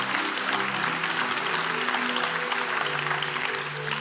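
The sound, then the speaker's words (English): A church audience claps steadily, called to clap and say hallelujah for the Holy Spirit, a dense, sustained wash of hands for several seconds, with faint murmuring voices underneath and no pauses in the applause. “Yes, somebody clap and say, hallelujah for the Holy Spirit.”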